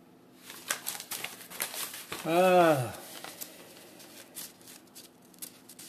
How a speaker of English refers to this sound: Turning pages here.